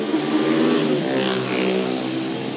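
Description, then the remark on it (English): Steady, loud engine noise with a revving, droning quality, like many motorbikes moving through busy street traffic in Ho Chi Minh City (Saigon), Vietnam, with no voices. “There's a lot of motorbikes here, guys.”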